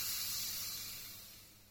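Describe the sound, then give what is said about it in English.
A champagne bottle eased open with a soft, airy hiss of escaping gas and no pop, the bright fizzing sound fading steadily over about two seconds. “In case you missed it, in polite society, this is what a champagne bottle being opened sounds like.”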